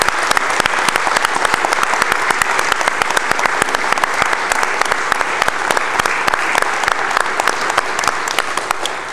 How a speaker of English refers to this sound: Will you join us in applauding and welcoming our two new commissioners?